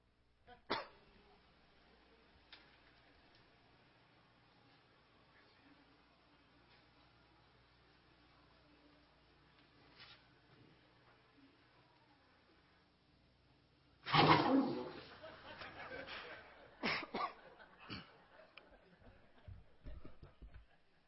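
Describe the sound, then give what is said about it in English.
After a long, quiet stretch, a dog erupts into loud, agitated barking at its own reflection in a mirror, a sharp cluster of barks followed by a few more scattered bursts before it settles. “He was trying to attack himself in the mirror.”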